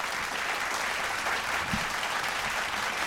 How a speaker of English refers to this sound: I'm going to clap that up. Yeah.